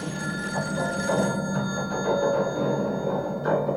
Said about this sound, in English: Your phone's ringing.